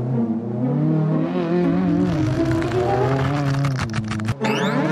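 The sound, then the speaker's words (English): A short, loud anti-motorcycle bumper jingle for a motorsport talk show, built from roaring racing-car engines revving up and down in pitch almost continuously, then breaking off abruptly near the end, played when someone mentions motorcycles. No one speaks. “Don't make me play the anti-bike bumper again.”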